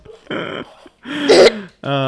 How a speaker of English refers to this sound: for everybody who does not know, you guys get hiccups when you start laughing really hard.